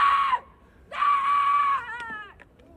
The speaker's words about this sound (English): I just heard screaming.